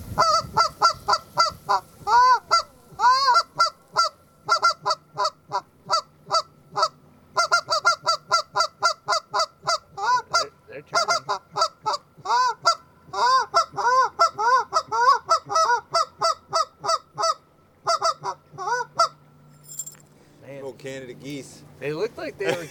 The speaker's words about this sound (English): It is down in the creek bottoms. And them old Canada geese, they might swing close